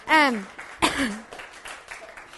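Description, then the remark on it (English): An audience claps and cheers at the speaker's news that she will soon be a mom: a couple of high, falling whoops ring out over a steady patter of applause that gradually tapers off. “Y'all can clap about that.”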